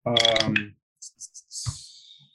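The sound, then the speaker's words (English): After a brief voiced exclamation, dice clatter on a table: three quick light clicks followed by a longer rattling roll with a soft thud, moderately loud. “Those fucking dice.”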